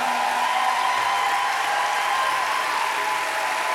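The audience of Mercy Culture Church in Fort Worth, Texas, claps steadily as the pastors, back from a sabbatical, reach the pulpit, a dense, continuous wash of many hands at an even, fairly loud level with no talking over it.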